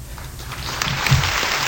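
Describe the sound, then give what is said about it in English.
An audience claps steadily for Rudy Giuliani after his remarks on public funding for abortions, a dense, even patter of many hands that swells slightly toward the end, with no voices standing out. “He got applause.”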